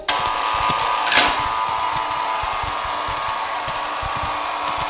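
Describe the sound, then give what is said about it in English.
A prison cell door, cell 22, unlocks with a steady mechanical grinding, dotted with rapid, uneven ratchet-like clicks and a brief louder clank early on, continuing for about five seconds without any voices. “Unlock cell 22.”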